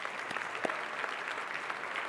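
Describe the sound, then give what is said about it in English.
An audience at a Christian Church service applauds steadily, a dense wash of many hands clapping at an even level for a couple of seconds, with a few sharper claps standing out from the crowd, welcoming the church's regional minister of the Central Rocky Mountain region. “Let's give her a welcome.”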